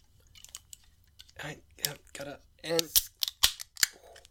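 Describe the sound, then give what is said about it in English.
Sharp metallic snaps and pops of cans of sour beer made with Mandarin peels being cracked open, three crisp clicks in quick succession followed by a brief fizzy hiss, with murmured voices before them. “Well, let's crack them open, eh?”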